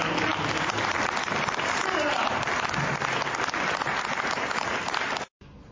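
A pro-Israel audience applauds steadily, a dense wash of clapping that holds at a constant loud level for about five seconds before cutting off abruptly.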